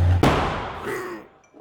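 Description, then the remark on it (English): A loud, sharp gunshot cracks out, followed by a long rumbling echo that slowly fades away. A low hum sits underneath before the blast, and no one speaks. “Exploding gunfire ripped Tony from his slumber like it was waking the dead.”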